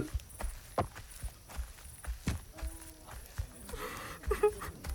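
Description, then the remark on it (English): A horse named Shiloh, a mare, walks at a slow, uneven pace along a long trail, her hooves clip-clopping with each step a sharp knock against a steady low rumble, with murmuring and a brief higher tone near the end. “Yep, I know, but at least there'll be water and hay for you.”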